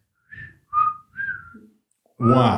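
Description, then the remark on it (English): Someone whistles a bird call: three short, bright notes, each sliding in pitch, with brief pauses between. A burst of speech follows at the end. “I guess I could probably, what do I do? A bird is kind of a...”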